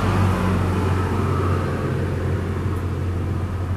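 A tractor engine drones steadily with a deep, rumbling low hum and tonal bands as the tractor goes by, holding a constant loud level throughout with no voices.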